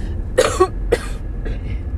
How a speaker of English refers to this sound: I'm so sorry. This is so gross to cough on a podcast.